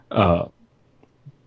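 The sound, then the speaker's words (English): One short, throaty cough, a single rough burst that stops abruptly and leaves near silence with a faint click or two afterward. “Had a cough.”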